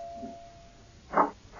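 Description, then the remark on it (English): A doorbell rings insistently: a thin sustained tone gives way to a short, louder ring, and another ring starts just as the sound ends. No one speaks. “I'm coming. Wear out the bell.”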